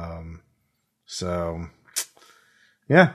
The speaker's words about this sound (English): They probably knew that you were coming and were judging from the sound of the explosion.